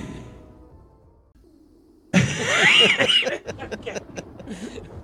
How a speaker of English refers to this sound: I gotta quit coughing my COVID.